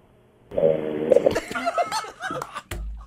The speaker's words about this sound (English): Maybe he fell asleep. I felt like I might have heard a snore. Yeah, I did. Yes, he's asleep.